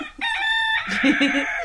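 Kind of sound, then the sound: bird, rooster crowing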